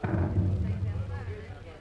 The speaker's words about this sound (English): Oh, well, that's just the fever cannon from New Orleans. You can hear it when the wind's right.